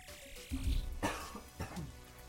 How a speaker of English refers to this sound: already coughing.